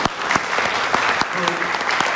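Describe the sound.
Steady, dense clapping from a crowd giving a round of applause in thanks to a rabbi, many hands at once with a few sharper claps poking through. A faint voice or cheer is mixed in briefly near the middle.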